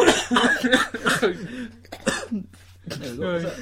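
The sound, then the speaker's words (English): A person makes a run of exaggerated hacking coughs and throaty gagging noises, imitating someone coughing up bits of cat fur, in several loud bursts with short pauses between. “Coughing up bits of my cat's fur.”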